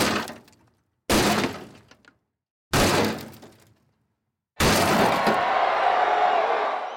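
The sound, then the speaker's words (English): Three heavy, loud crashes strike at roughly even intervals, then a fourth impact gives way to a sustained shattering of glass with a bright, crackling tail, as Hulk Hogan breaks into Ted DiBiase's pod during a wrestling match. No voices are heard. “Hogan then powers up, he hulks up, and he breaks into Ted DiBiase's pod.”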